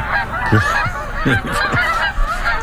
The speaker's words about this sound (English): Pretty quiet out in the Talking Birds garden this morning, although we did hear just a few minutes ago a skein, a small skein of Canada geese flying by out there.